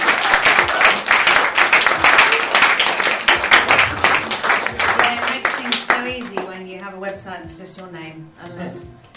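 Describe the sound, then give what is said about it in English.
A crowd applauds loudly to welcome Timandra Harkness to the stage, with dense, steady clapping for about six seconds. The clapping then fades as a single voice begins talking. “And welcome her to the stage!”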